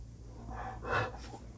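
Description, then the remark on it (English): A restless dog gives a short burst of snorting, wheezy breaths, one sharp gasping huff in the middle, over a low steady hum with no one talking. “These dogs just restless.”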